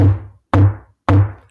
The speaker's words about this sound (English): Come closer. Hear the knock on the door.